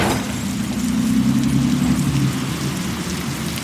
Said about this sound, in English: And look, a car just went by.